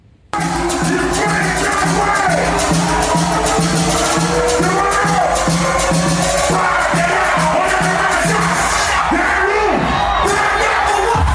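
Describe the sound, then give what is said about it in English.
A loud, dense crowd at a DJ party roars and whoops over pounding dance music with a steady thumping beat as the DJ gets the crowd going, voices yelling and cheering throughout, continuous for the whole stretch. “And I took a video of him getting the crowd going”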